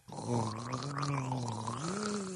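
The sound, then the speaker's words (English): A person imitates a whale call while gargling water, making a steady, low, bubbly hum that wavers and then rises in pitch near the end. The sound is loud and sustained, with no talk. “What happens when you do it with water in your mouth?”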